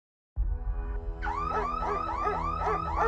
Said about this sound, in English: The year was 1990. Carol Alite was terrified. The security alarms at their South Jersey home blared while the family Rottweilers barked ferociously.